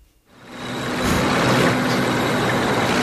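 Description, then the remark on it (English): A bus engine rumbles up loudly after a brief silence, then holds a steady, droning idle with a low hum and broad mechanical noise, no voices. “Get in my bus. The booty bus.”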